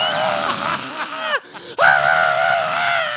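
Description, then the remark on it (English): A man lets out a loud, drawn-out thrill-ride scream, his pitch wavering, breaking off briefly for a gasp midway before launching into another sustained yell. “I figured out like if you just scream on a roller coaster, you don't get sick.”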